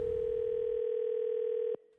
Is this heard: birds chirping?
no